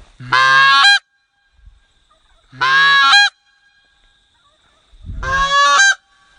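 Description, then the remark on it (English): Three loud, brassy honks from a reed goose call, each about half a second long and evenly spaced, with a rich buzzing tone and short gaps of quiet between them. The caller pushes air from the belly to break the reed over for each honk. “So all you've got is, this is a standard, just simple honk.”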